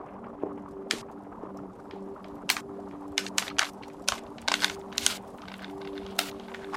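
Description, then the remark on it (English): A digitally manipulated and synthesized bubbling soundscape representing bubble-like vesicles inside cells: irregular, sharp pops and crackles burst at uneven intervals over a steady low electronic hum, moderately quiet throughout with no voices. “The sounds were manipulated and synthesized digitally to create a dynamic landscape that reflects the disease's timeline and effects.”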